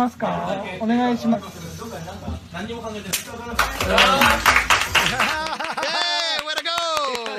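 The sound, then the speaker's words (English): Restaurant staff slap people in the face: a sharp slap lands, then a flurry of quick backhands and wind-up whacks over several seconds, loud, mixed in with excited voices, chatter and applause. “I mean, and they backhand, and she winds up and whacks.”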